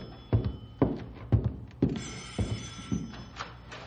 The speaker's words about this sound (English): Hey, phone's ringing. I'll get it. Never mind, pal. I'll get it. It's probably for me anyhow.